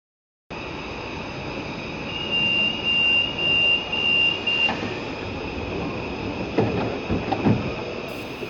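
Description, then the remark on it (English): A train pulls out of a station with a steady rumble and a high metallic whine, a run of short electronic beeps, then a few heavy clunks near the end. No one speaks. “we should probably take the train and leg it out of here”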